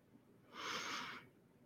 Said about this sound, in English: One more cleansing breath from the top of our head down to our senses, our nervous system, just breathing in.